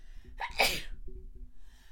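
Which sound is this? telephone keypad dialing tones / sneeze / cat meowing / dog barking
sneeze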